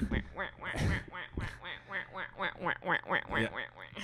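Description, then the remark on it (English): A person imitates ducks quacking, producing a rapid, steady series of nasal quacks at a fairly loud level, about a dozen in a row with no other talking. “And they could hear like the quacks like circle around.”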